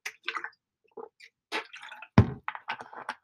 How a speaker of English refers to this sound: Excuse me, I'm going to drink my water. Drink your water, folks.